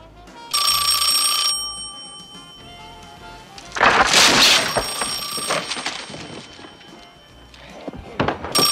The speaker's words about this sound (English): Then the phone rings again, and it's the Thelma guy.